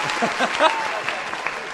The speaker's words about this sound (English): All right. Yes. Round of applause.